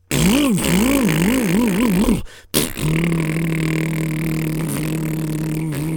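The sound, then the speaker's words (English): A generator engine sputters and surges unevenly, cuts out for a moment, then catches and settles into a loud, steady droning hum that runs until the end. “And the generator was going.”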